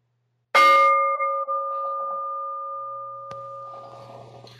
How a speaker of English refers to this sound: And I'm going to chime the bell here as we begin this resting in self-acceptance meditation.